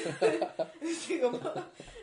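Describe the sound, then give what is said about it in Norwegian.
A few soft, muffled coughs, deliberately held back and quiet, blending into breathy throat sounds with a hint of a chuckle. “Så prøver jeg på sånn stille host.”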